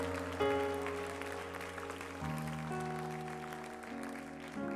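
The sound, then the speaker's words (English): A large church audience claps steadily and continuously in praise to the Lord while sustained organ-like chords play loudly underneath, shifting notes every second or two; no distinct individual shouts stand out from the applause. “Would you clap your hands one more time to the Lord? Give a shout of praise unto the Lord, everybody.”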